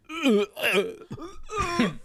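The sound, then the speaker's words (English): A series of loud, croaky burps into a microphone, about four guttural voiced bursts in quick succession, with no talking. “No, I'm like burping. It's different. Oh, please burp into the microphone.”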